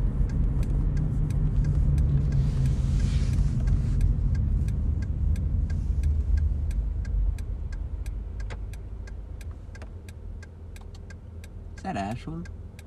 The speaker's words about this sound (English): That's her car. I don't know if that's her. Like her model. It is not her.